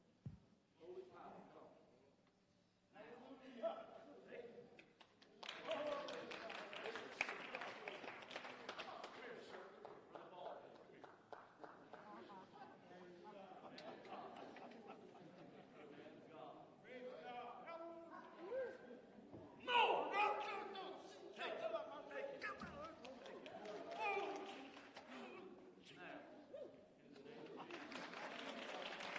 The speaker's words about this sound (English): Stop the clapping. Stop the clapping.